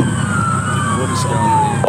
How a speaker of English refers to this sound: A stolen Mercedes SUV crawling south down the M1 through the Gold Coast and into northern New South Wales, followed by a symphony of sirens.